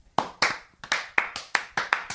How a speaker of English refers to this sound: Woo! Let's get some applause.